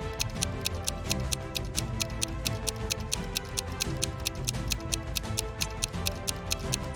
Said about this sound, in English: You have nothing to use to get the keys out of the jar but your own hands, and the timer goes on ticking.